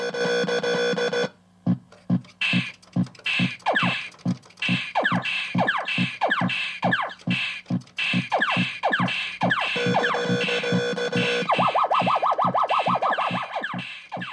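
Space Invaders-style retro arcade game sound effects: a steady train of rapid, descending electronic zaps and blips, with a sustained buzzing tone at the start and a quick warbling siren near the end.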